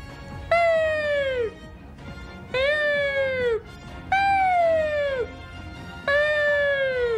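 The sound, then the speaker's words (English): A voice imitates an ambulance siren with four drawn-out, falling wails, each about a second long with short pauses between, fairly loud against a quiet background. “That's an ambulance coming to take me away because the sight of you stopped my heart.”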